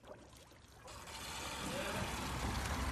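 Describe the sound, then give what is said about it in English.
A toilet flushes and keeps running, the rush of water swelling louder after a quieter start and holding as a steady, gurgling pour as the water goes up instead of down and overflows. “You flush, and the water goes up instead of down, right?”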